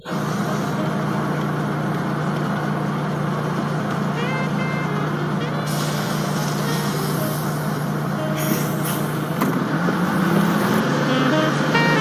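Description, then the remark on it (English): A large bus rumbles and idles as a man gets off it, then releases sharp hisses of air brakes partway through and again near the end, over steady road noise. “He's getting off the bus.”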